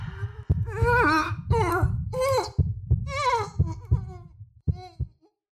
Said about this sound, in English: I heard a sound. I tell you, my hearing had come extraordinarily good. And I realized it was the old man's heart beating louder, louder.